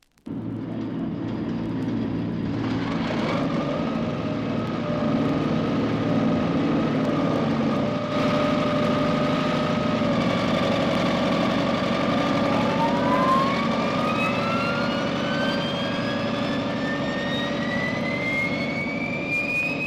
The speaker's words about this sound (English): We hear now an F-100 being started up. The first sound is the mobile starting engine, followed by the familiar rising whine of the jet turbines.